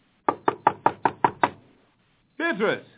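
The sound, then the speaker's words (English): Seven quick, evenly spaced knocks rap sharply on a wooden door, fairly loud, followed after a short pause by a brief burst of a raised voice. “Will you open the door?”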